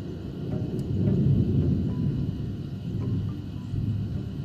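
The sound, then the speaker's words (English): Deep, continuous thunder rumbling steadily for several seconds, heavy and low, swelling slightly midway and again near the end, with no voices present. “The sound of the boneyard's thunder was getting louder and louder.”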